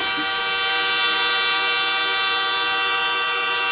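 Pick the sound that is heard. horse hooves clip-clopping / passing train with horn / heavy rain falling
passing train with horn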